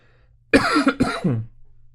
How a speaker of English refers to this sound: Again, apologize for this coughing and stuff going on. It's just craziness. It's just crazy.